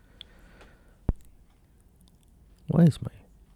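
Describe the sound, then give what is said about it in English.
A single sharp, dry click from a person's throat, then a short throaty gulp with a faint voiced tone about two seconds later, over quiet background hiss. “Why is my throat clicking?”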